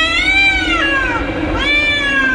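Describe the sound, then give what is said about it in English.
A cat lets out a loud, drawn-out yowl as someone treads on its tail, its pitch sliding down and back up in a wailing caterwaul that fills the whole couple of seconds, piercing with no talking. “Someone trod on a cat's tail.”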